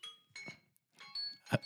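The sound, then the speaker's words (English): A timer goes off with a few bright, high-pitched electronic chimes in short irregular bursts, ringing clearly with no talking over it, and a dull thump near the end. “That's the timer.”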